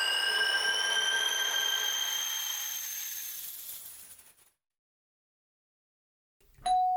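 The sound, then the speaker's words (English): A doorbell ding-dong announcing a surprise guest reveal on Ricki Lake's talk show rings out with bright, layered overtones that slowly fade over about four seconds, followed by silence and the sudden start of another short tone at the very end. “So for a while there were a few seasons, every episode had a ding-dong.”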